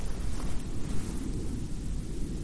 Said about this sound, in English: It's another plane. Yeah, he keeps hearing planes.